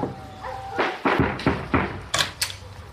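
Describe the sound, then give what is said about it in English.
Someone knocks on a door, a series of about six firm, evenly spaced raps with quiet around them, with a couple of sharper, brighter knocks near the end. “Until two naked porn stars came knocking.”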